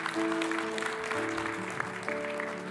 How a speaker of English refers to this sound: That muted applause is because I did not finish my task.